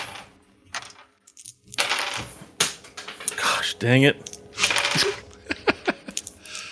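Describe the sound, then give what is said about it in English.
Dice dropped during a tabletop role-playing game clatter and bounce across a hard table in a quick burst of sharp clicks, tapering into a few scattered taps, with a person briefly muttering. “Every time you drop a dice, you can't use it for damage.”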